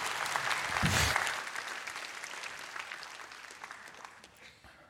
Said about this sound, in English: Happy for you to clap when I'm wiping my tears. Don't like clap in the middle of my talk, okay?